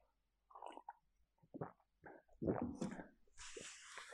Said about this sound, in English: I'm just all over the place, so let's just do a water break here.